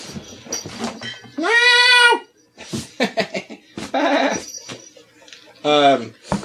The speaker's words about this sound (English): Here's my familiar. Dear cat. She's like eating something.